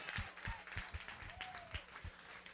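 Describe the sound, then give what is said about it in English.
An audience claps hands in praise of the Lord in a steady, rhythmic beat, the crowd's claps landing together roughly three times a second over low thumping music and a faint voice. “If you want to be like Enoch, would you stand to your feet and give the Lord a hand clap of praise?”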